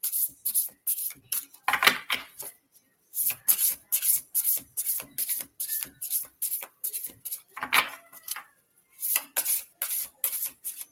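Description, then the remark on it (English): A new deck of cards being shuffled over and over, a steady run of short, dry papery swishes and flutters with brief pauses between bursts, fairly quiet, with no one talking. “I do like to shuffle them like this and see what cards come out, but since these are new, I might just lay them out and pull a card for you.”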